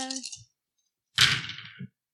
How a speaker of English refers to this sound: What is with these dice? Today. This is not a good dice roll.